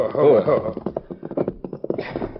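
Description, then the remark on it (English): The sheriff's horse's hooves clip-clop in a quick, steady rhythm of sharp knocks, moderately loud, following a brief tonal sound at the start, with no talking over them. “Yeah, that's the sheriff's horse all right enough.”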